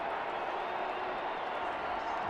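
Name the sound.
stadium crowd cheering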